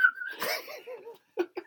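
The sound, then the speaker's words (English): A thin, steady whistle is drawn in on a breath taken in through the mouth, then breaks into a breathy, wavering squeak, followed by two short breathy puffs. It is fairly quiet, with no talking. “That's an in whistle. I can in whistle, you know.”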